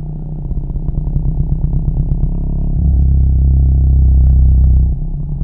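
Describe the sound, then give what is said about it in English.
Low, rumbling whale calls: a rapid train of throbbing pulses that swells into a steady, deep droning groan before cutting off, with no one talking. “A lot of whale calls sound more like this.”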